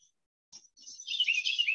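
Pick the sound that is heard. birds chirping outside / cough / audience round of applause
birds chirping outside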